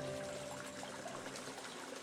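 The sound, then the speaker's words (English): Water flows and splashes steadily in a fountain at the Alhambra, a continuous gentle rushing and trickling with no pauses, heard on its own without any voices. “Water, so rare and precious in most of the Islamic world, was the purest symbol of life, whether providing for its 2,000 thirsty residents, masking secret conversations, or just flowing playfully.”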